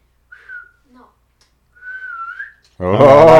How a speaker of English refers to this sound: you know how to whistle? Let's hear it.